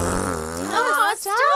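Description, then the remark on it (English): Two long, loud, buzzing farts in quick succession, the first a low wavering rumble that rises in pitch, cut off by a brief gap before a second higher, squeakier one. “There were 2 farts.”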